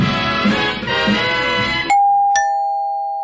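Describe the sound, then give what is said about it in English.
A two-tone doorbell chime rings out loudly, a bright ding followed by a lingering dong that slowly fades, coming right after a stretch of busy, dense music. “The doorbell!”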